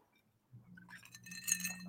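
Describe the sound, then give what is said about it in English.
Cocktail glasses clink together in a toast, a bright ringing chime with a short shimmering tail, fairly soft, over a low background hum with no one speaking. “And I'm going to raise my glass to you”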